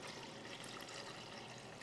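Room-temperature water, about 450 grams, pours steadily into a mixing bowl, a continuous, fairly quiet rushing splash that holds evenly for a couple of seconds with no talking.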